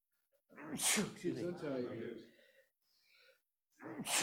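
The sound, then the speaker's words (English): A person sneezes once, loud, with a sharp burst trailing into a voiced tail. A soft breath follows, then another abrupt sneeze-like burst right at the end. “Hold on, I'm gonna sneeze.”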